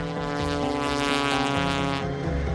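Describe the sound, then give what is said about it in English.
A small Skywagon propeller plane's engine drones steadily and loudly as it departs runway 33 in Alaska, its buzzing harmonic tone shifting slightly in pitch as it powers up, with no voices. “Here's the traffic, Skywagon. 5 Alpha Romeo's departing runway 33.”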